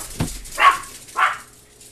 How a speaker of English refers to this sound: Dogs. They sound vicious, but they're not. They don't sound vicious. They sound annoying and puntable.